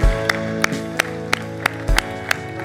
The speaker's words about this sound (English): Why don't we give these people a massive big hand, eh? Fantastic. Wonderful. Wonderful. You responded at home. We're clapping for you as well. Wonderful.